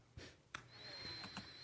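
Someone blowing their nose, quiet: a couple of short, breathy snorting bursts, then a thin, high whistling tone that holds steady while a few softer puffs follow. No talking.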